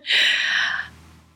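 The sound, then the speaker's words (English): A single sneeze: one loud, hissing, breathy burst that holds for most of a second and then trails off quickly. No one speaks. “The sneezing actually is kind of funny.”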